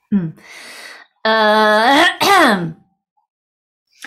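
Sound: throat clearing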